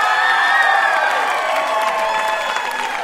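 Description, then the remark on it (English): The studio audience of the quiz show Ask Me Another erupts in sustained cheering and applause for the winner, a dense wash of clapping with whoops and shouts layered on top, loud throughout the few seconds. “And the crowd goes wild for our winner”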